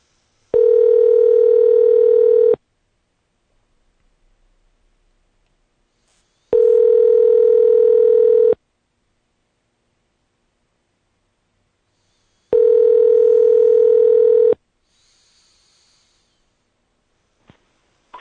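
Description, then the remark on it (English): A telephone line tone sounds in three long, steady pulses of about two seconds each, separated by silent gaps, clear with no one talking, as a call is placed on a traditional phone. “I want to make sure I get the phone number right.”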